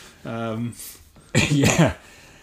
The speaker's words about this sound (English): Excuse me, I keep coughing.